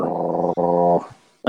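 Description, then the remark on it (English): A person imitates a low animal growl with their voice: two sustained, rumbling growls close together, loud, trailing off briefly before a short voiced sound starts again at the end. “He kind of growls lightly under his breath and kind of arches his back a little.”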